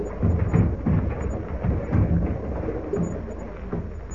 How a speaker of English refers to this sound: And meanwhile, on shore, another danger threatens the storm-tossed Juanita. Seeking protection from the hurricane's fury in the lee of a huge mass of rock is the villainous Pete Escobar.